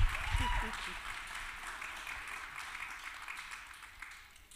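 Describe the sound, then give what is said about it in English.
An audience claps and cheers loudly, with a dense wash of applause and scattered shouts, holding steady at a sustained, energetic level throughout. “Start shouting and clapping right now, everybody.”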